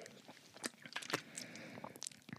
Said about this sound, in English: You need to drink it. You need to have three sips. Now? Yeah, okay. Three sips.